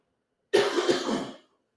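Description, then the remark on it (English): A single harsh, raspy cough bursts out and rattles on for about a second before cutting off, with silence around it and no talking. “Sorry about that, folks. Well, listening to me cough.”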